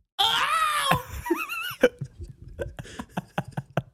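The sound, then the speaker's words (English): A person belts out a loud imitation of a Wilhelm scream, a strained falling yell, followed by a brief warbling vocal and then a run of choppy laughter. “Do a Wilhelm scream again, but like now.”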